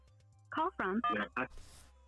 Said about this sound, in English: Oh, we got a phone call. Uh-oh.